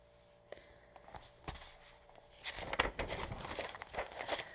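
Gerbils rustle and scratch about in their cage, a soft, irregular crinkling that starts sparse and grows busier and louder partway through, with no one speaking.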